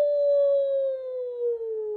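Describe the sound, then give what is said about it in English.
A single long, eerie werewolf howl holds steady for about two seconds, sliding gradually lower in pitch, loud with no other sounds around it. “Howls the werewolf.”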